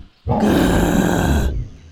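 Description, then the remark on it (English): A single loud lion roar bursts in suddenly and holds steady for over a second, deep and rumbling with a harsh, breathy edge, then cuts off abruptly. “Lion roared.”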